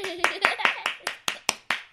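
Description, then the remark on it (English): Hands clap in a steady, quick rhythm, about nine sharp, bright claps over two seconds, celebrating the Berenstain Bears first-time reader book "Mitzi", with a voice briefly audible under the first few. “Everyone clap.”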